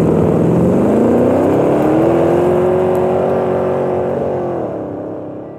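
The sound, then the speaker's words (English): Two cars' engines roar loudly and climb in pitch as they accelerate hard from a standstill, side by side at the start of a race, holding a strained, rising whine before the sound begins to fade as they pull away. “Glenn Drevere, was positioning himself between the two cars, their engines growling as they crept forward until they were side by side.”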